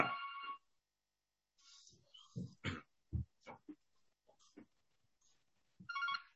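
A telephone rings in two short, bright electronic bursts, one at the start and one at the end, with scattered soft grunts and knocks in the quiet gap between.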